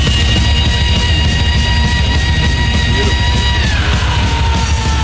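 A loud, sustained heavy metal scream holds one raspy pitch for several seconds, then slides downward near the end, backed by dense, pounding distorted guitars and drums.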